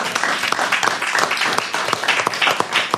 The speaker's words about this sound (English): The best failure ever. I think we can give a big round of applause for Ernest Shackleton.